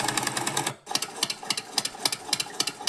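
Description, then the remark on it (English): An old, classic 1970s tractor engine chugs, a rough, rapid rhythmic clatter that briefly dips near the start, then keeps running steadily and loudly with no talking. “But yes, today on the podcast, we're going to have the podcast interspersed with tractor sounds.”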